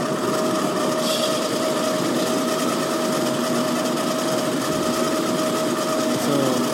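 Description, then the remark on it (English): A coffee grinder grinds roasted coffee beans steadily, a loud, dense mechanical whir with a gritty rasping texture and a sustained motor hum, continuous for the whole stretch with no talking. “All right, you ready to grind? Yeah, let's go. Loud.”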